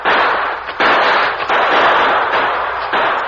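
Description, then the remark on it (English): An exchange of gunshots between the Lone Ranger and Tonto, sheltering among trees, and two outlaws at twilight: several loud, harsh cracks fire off in quick, uneven succession, each blast running into the next in a dense burst of noise with no voices. “In the twilight, the Lone Ranger and Tonto exchanged shots with the two remaining outlaws.”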